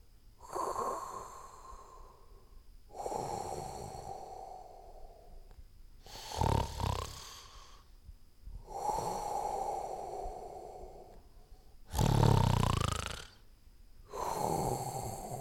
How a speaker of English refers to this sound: Yeah, I'm pretty sure that's a big something snoring.